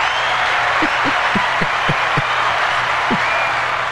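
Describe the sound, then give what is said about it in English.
Canned applause from a sound-effect button: a dense, steady wash of clapping that stays loud and even for about four seconds, with a few sharper low thumps scattered through it and no voices. “If it's annoying the hell out of you guys, then I won't do the applause button anymore.”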